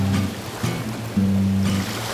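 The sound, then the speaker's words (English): A steady rushing wash of ocean waves, fairly loud and continuous, with a low droning hum running beneath it and a few swells surging up along the way. “Whatever that may be, up and down, side to side, and over the waves we go.”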